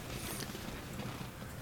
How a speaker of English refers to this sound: This is one of those spray cans that cleans out keyboards or electronics.